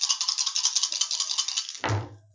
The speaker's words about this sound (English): All right, so if you're trying to influence, that is going to be a will test. Oh, a will test? So roll your will dice.